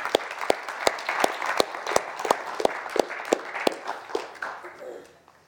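A church audience applauds steadily, with sharp individual claps standing out in a loose rhythm over a dense wash of clapping, then tapering off at the end, welcoming their new pastor and his wife.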